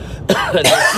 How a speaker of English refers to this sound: Why did he cough at all of them? Middle age.